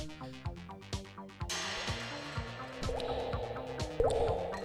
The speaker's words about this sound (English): And there it is. The slow drip of insanity.